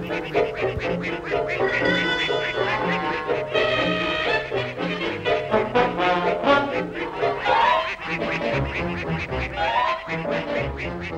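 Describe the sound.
A raspy, squawking Donald Duck cartoon voice quacks and babbles continuously, loud, with garbled duck-like chatter over a busy background of music.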